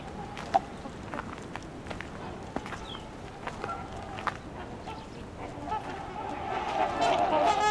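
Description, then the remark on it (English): Busy outdoor bird chatter: short house sparrow chirps pop in repeatedly over a steady backdrop of honking waterfowl, which swells louder toward the end. “You can hear the house sparrows here.”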